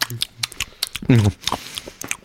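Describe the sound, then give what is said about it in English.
Someone chewing food, with a series of irregular, crisp wet mouth clicks and smacks, broken midway by a short low voiced murmur. “You're chewing.”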